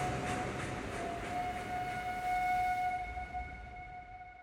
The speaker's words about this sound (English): Still smiling, Dillinger flashes a wink as the whistle of the train echoes in the surrounding expansive farmland as they drive away.